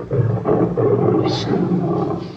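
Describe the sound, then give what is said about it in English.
Low, rumbling growls from lions pacing back and forth in cages run steadily through the whole moment, deep and grumbling, with a short breathy hiss cutting in partway through. “As they start to hear the low grumbles and growls of big cats, while we see all the stock footage that the BBC had of lions pacing back and forth in cages.”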